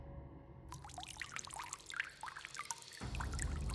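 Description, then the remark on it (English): Water trickles and drips steadily from a vacant stall, with scattered bright droplet sounds over a low rushing flow that swells louder toward the end. “Then I could hear water dripping.”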